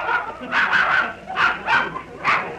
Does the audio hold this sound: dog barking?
yes